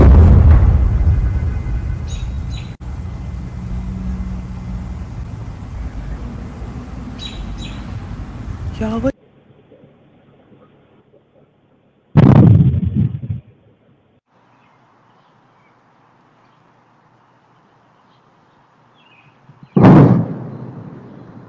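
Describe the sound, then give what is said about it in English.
Recordings of the same sonic boom, 1,000 feet off the ground, from different perspectives: a long, loud roaring rumble that cuts off abruptly, then a sharp, heavy boom, a quiet stretch, and one more sudden boom near the end. “So play the first one here. Cause this is the sonic booms.”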